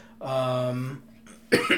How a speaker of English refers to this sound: My family has been very sick. I still have a bit of a cough.